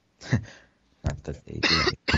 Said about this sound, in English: Oh gosh, this cough is bad.